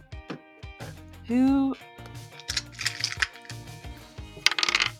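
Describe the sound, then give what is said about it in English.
A small die clatters and bounces across a hard floor in a quick series of sharp knocks, with a brief vocal exclamation and murmuring voices underneath. “Well, that die fell on the ground.”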